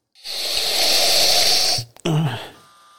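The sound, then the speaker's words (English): A long, loud, steady sniff of William Heaven Hill whiskey drawn in through the nose for nearly two seconds, then a brief pause and a short, voiced exhale with a low grunting tone. “It's a big sniff.”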